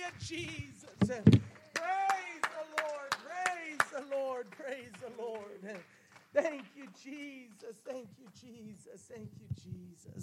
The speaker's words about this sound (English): How about we clap our hands? Let's make a joyful noise to the Lord. Hallelujah.